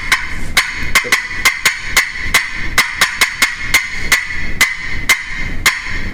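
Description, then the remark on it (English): Rapid, sharp clucking notes from a turkey call imitating a hen turkey's cutting call, fired off in an uneven staccato burst of about fifteen loud cuts with brief pauses, no talking. “cutting to me is when a hen's doing that. I mean, in the woods, that's a turkey hunter's bread and butter call.”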